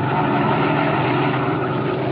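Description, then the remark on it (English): A black sedan's engine rumbles as it slows down along a road, a steady, continuous low drone with a dense mid-range hum and no voices, holding an even loudness for about two seconds. “As our story continues today, we find him and his henchman Spike in their black sedan, slowing down along the road and searching for a likely place for what Donelli has in mind.”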